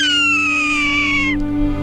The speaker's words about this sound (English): Here's the sound of the Swainson's hawk. The sort of complaining cry of Beauteo Swainsoni. The Swainson's Hawk, today's Talking Birds, featured feathered friend.